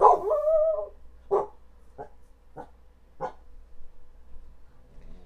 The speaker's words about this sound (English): Guys, don't pay attention to her. She's barking for no reason.